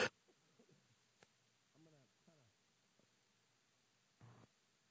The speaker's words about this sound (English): I'm as sick of my cough as you are, trust me.